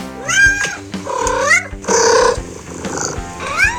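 A cat named Tennessee meows repeatedly in a series of loud, drawn-out, rising and falling cries, with short pauses between each call.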